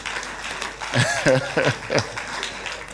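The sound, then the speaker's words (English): An audience claps their hands for God in a steady, dense wash of applause, with voices calling out loudly over it partway through. “Clap your hands for God.”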